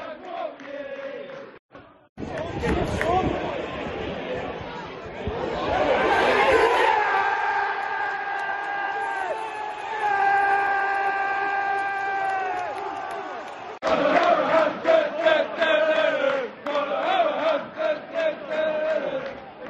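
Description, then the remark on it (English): A packed football crowd in a compact away end at a retro ground with a corrugated iron roof roars continuously, swelling into loud sustained chanting sung in unison, then breaking into rowdy cheers and shouts. “Brilliant away end, like so compact. Loads of noise and loads of atmosphere.”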